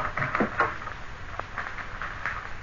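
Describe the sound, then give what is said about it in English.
A service door is opened and shut: a few soft clunks and rattles in the first half-second, then a lone dull knock, fairly quiet, with no talking. “We just opened the service door there.”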